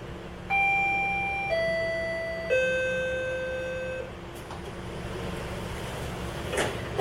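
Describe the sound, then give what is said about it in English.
A Toronto GO commuter train at the downtown GO train station: a loud three-note descending electronic door chime rings over a steady low rumble, followed by a hissing, clattering noise as the doors close. “But first, please accompany me onto Toronto's very own GO train.”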